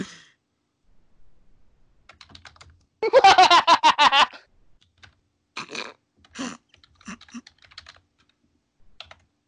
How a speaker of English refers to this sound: We're just typing in stuff here.